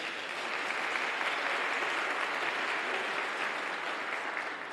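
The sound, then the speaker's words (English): An audience claps steadily for several seconds in response to news that a new building passed its fire safety inspection. The clapping is a dense, even patter of many hands at moderate, somewhat subdued volume, with no cheering or voices on top. “Now, the reason for the slightly muted applause is it's a step in the right direction, but we have several more hurdles to go.”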